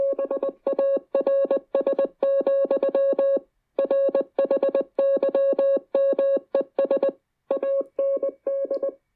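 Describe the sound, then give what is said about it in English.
A steady single-pitched electronic tone played from a phone keys on and off in rapid Morse code bursts, short dits and longer dahs in grouped runs with brief pauses, played loud and clear with no talking. “I'm not like a savant who can read like Morse code immediately.”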